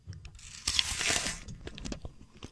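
A crisp, loud crunch of teeth biting into an apple, followed by several smaller wet crunches and chewing sounds up close, with no talking.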